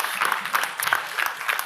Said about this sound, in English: Yeah, you can clap that up. Let's clap that up.